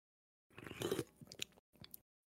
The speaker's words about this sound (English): Like, it is the sweetest thing of all time. And I had a bit of it this morning. And I'm going to take another sip for you just for the audio listeners. Ready? Audio listeners, listen up.